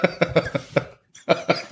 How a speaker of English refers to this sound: Don't worry, everyone, it's... Safe. It's a safe cough. I've got asthma.